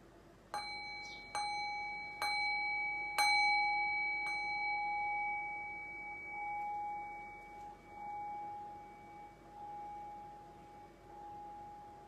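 A meditation bell is struck about five times in quick succession, each strike bright and metallic, then its pure ringing tone sustains and slowly fades over several seconds with no voices.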